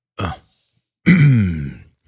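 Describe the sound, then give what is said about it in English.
Someone clears their throat: a short, raspy burst, a brief pause, then a longer, gravelly voiced rumble that trails off. No talking. “Clear my throat.”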